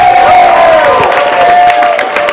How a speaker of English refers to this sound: Start clapping right now. Get the energy up.